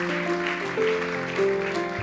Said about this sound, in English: How about giving the Lord a good hand clap of praise?